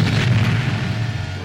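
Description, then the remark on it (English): A space station's cannon fires a warning shot with a loud, deep boom that rolls on as a sustained low rumble, heavy throughout, with no voices. “one of the Droid World cannons aimed at them and fired.”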